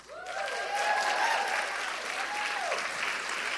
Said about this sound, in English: And can we just give a big round of applause to the PAW?